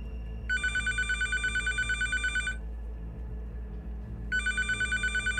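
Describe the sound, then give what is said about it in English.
A satellite phone rings in two bursts of rapid electronic trilling, each about two seconds long with a pause between, clear over a low rumbling background hum. “Satellite phone is ringing again.”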